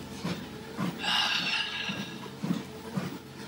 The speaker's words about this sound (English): Apologies for the sniffles. I need a plug-in just to remove them automatically.